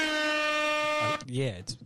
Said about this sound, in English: Okay, we can do air horns for that.